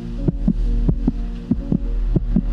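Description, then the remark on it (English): A man's heartbeat played through a heart monitor held facing him: four steady lub-dub double thumps at a brisk pace, amplified, riding over a constant low electronic hum with no one speaking. “They're holding the heart machine, and she has it faced toward him, so you'll hear his heartbeat and what happens next.”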